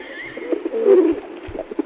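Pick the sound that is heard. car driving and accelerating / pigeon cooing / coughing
pigeon cooing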